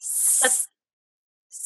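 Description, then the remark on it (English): A person imitates a snake with a long, steady hiss lasting over half a second, then falls silent before starting a second hiss. Fairly loud, with no words spoken. “So for you, it was maybe the hissing for a snake.”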